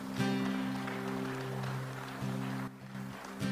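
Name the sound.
audience applauding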